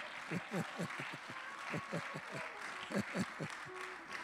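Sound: audience clapping hands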